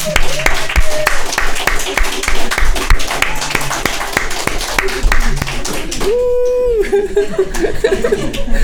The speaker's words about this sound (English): Let's just give the Lord Jesus a hand clap.